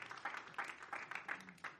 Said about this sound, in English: And I trust that you and I, tonight, by God's grace, give the Lord a good clap offering.